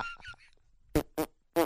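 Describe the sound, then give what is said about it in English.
A few thin, squeaky toots give way to three loud, buzzy fart blasts in quick succession, each short, separated by brief silences. “Comedy, fart comedy is generic.”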